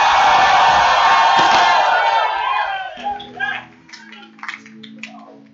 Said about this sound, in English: Oh, clap your hands for Jesus. Come on, clap your hands, lift up your voice and shout.